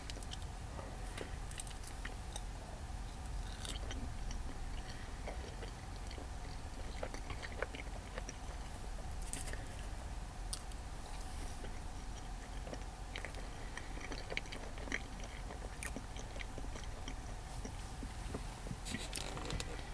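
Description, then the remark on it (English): Chewing of a crunchy marshmallow treat, with steady wet mouth sounds and frequent small crackling crunches throughout, quiet and intimate with no talking. “Someone eating marshmallows.”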